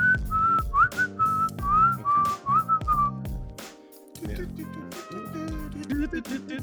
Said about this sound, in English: I knew how to whistle perfectly. You don't know how to whistle? Well, it's like...